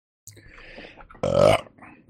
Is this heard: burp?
yes